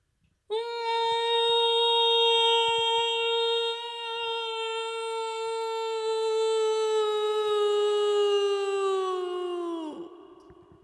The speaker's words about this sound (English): Scream backwards.